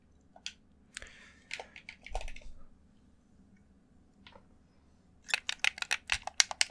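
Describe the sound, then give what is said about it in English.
Quick plastic clicks from game controller buttons while playing the survival game Stranded Deep on a PC, scattered at first, then a brief pause before a rapid, louder burst of tapping near the end. No one speaks. “ASMR Playing Stranded Deep Survival Game! (CONTROLLER CLICKING)”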